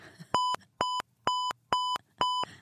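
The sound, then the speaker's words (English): Five short, loud electronic beeps from a checkout register scanner at a Gap for Kids clothing store, evenly spaced in a steady rhythm, each a clear, bright tone with near silence between them. “They largely ignored me until they said, hello, are you ready to check out? And then they beep, beep, beep.”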